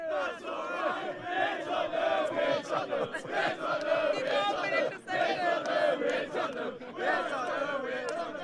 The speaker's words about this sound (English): All I'm going to ask you is a question. It's an open-ended question. If you think it's going to happen, you cheer.